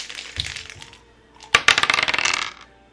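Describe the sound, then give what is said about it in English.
Two dice, showing a 1 and a 3, are rerolled across a hard tabletop: a soft rattle first, then a sharp hit followed by a quick run of bouncing, tumbling clicks that settle within a second. Fairly loud, with no talking. “Your choices are to do it again, the same 2 dice, or pull the 3s out.”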